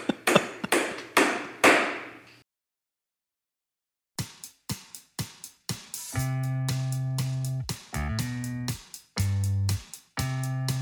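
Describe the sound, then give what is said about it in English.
Sharp, steady hammer blows strike outside in a quick series, pause for a couple of seconds, then resume. Later hits mix with a sustained ringing, metallic tone. No voices are heard. “Stop the hammering out there.”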